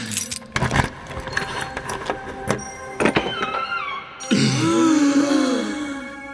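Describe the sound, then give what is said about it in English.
Metallic jangling and several sharp clicks as a key works in the lock of a golden treasure chest in a crystal cave, followed by a louder, drawn-out creaking groan that fills the last couple of seconds. No one speaks. “All right, I'll just put this key in the lock and...”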